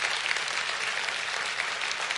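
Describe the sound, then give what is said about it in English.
A crowd claps steadily and loudly for a businessman sent to help pay for land, a dense wash of overlapping handclaps that holds at an even level throughout, with no voices standing out. “And if we could clap for land, we ought to certainly clap for a businessman that God would send to help us pay for that land.”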